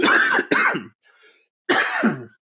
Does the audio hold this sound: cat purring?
no